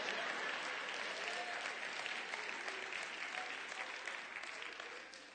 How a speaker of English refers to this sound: Now you can clap on that one.